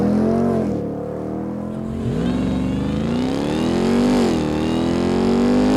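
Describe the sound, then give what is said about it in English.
A loud aftermarket Borla TRX exhaust on a 392 revs repeatedly, its deep engine note climbing and dropping in several surges, with a rough crackle on the pitch changes. No one speaks. “Yeah, so you hear the cracking, but it's not...”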